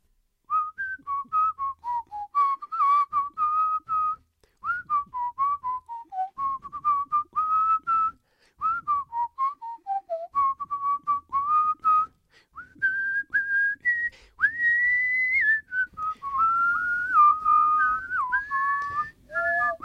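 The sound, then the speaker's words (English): A person whistles a lively song melody alone for a Guess That Song whistling game, with clear, bright tones that bend and hop between notes in short phrases, steady for about twenty seconds. “I'll whistle a song, and you guess what it is.”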